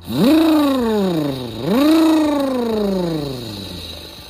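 A monster truck engine with giant tires revs up twice as it tears through mud pits, each roar swelling loudly and then sinking in pitch, continuous with no talking.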